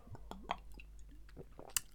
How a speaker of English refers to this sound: It was just me having a sip of water. Cool, refreshing water from the tap.